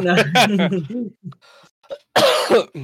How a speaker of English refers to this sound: Coughing. You keep coughing on this episode